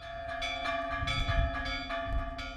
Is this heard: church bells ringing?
yes